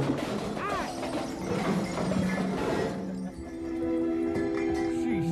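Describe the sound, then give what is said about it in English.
A burst of loud smashing and crashing as ceramic nativity scene figurines are smashed, small pieces clattering and clinking, followed by scattered debris sounds as the commotion settles. “Why, you insecure idiot! Smashing it!”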